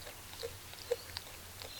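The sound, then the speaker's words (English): A koala on Raymond Island in southeastern Australia chewing eucalyptus leaves and tugging at a branch on a warm, clear autumn evening: soft, irregular crunching and clicking bites, a handful over a couple of seconds, quiet against a faint background hiss, with no voices. “Now, our koala, incidentally, you can hear that chewing there.”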